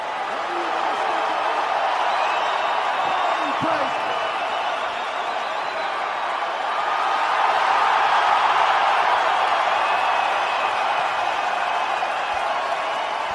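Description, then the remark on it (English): A large hockey arena crowd applauds and cheers as the camera shows Carey Price, in a steady, dense wash of clapping that holds for the whole stretch and swells a little louder partway through, with no distinct voices standing out. “You heard the applause just go up by, I don't know, like 50 decibels or whatever it was.”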